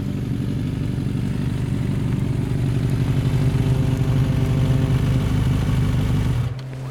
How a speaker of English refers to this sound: The town still slumbers under a light blanket of gloom. Dormant. Apart from a single car that meanders down the main street, the glow of its taillights leaving a wash of red in its wake.